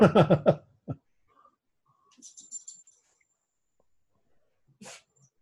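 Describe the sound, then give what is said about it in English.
Dogs bark in a quick loud burst, followed by a scattered string of thin, high-pitched yips and one last sharp bark, with quiet gaps in between. “It was barking and yipping, yes.”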